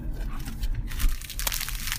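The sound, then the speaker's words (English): A salt and pepper chip bag, earlier folded up really small, crinkles and rustles as it is unfolded, a steady run of crisp, papery crackles with bright high-pitched bursts and a low rumbling background, no voices. “I bought us a bag of chips to eat on the way up”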